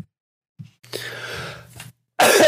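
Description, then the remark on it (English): A raspy throat clearing: a short grunt, then a longer gravelly rumble lasting about a second, followed by a sharp, loud breathy burst at the end. No speech. “Gotta clear my throat anyway.”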